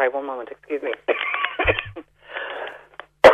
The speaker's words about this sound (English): I have this cough that everyone seems to have. Yeah, hard to shake, yeah. And talking seems to exacerbate it.